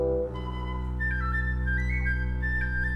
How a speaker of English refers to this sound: But the feathered friends managed to stick together as they swooped through the forest, with thrush singing his beautiful song.